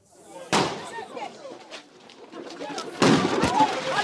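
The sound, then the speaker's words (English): Two loud, sharp gunshots ring out about two and a half seconds apart, each with a brief echoing tail, over a restless background of indistinct voices and commotion, fired in Lagos, Nigeria, during a presidential election in an attempt to steal a ballot box. “Shots were fired in the city of Lagos in an attempt to steal a ballot box.”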